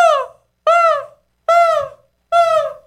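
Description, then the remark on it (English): A voice asked to imitate seagulls makes four loud, evenly spaced wailing calls like a car alarm, jokingly likened to a '96 Kia somebody tried to break into; each a strained, bright tone that swoops up and then slides down, separated by short silences. “That's a car alarm. That's a 96 Kia somebody tried to break into.”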